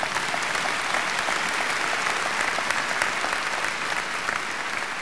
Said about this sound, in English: While friends were hitting the beaches, these graduates were hitting the books. And for that, we applaud your achievement today.